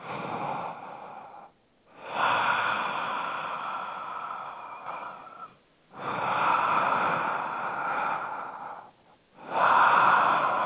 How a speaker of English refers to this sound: But I would say breathe. Because breathing is actually making sound. Here, I'll breathe making sound for you.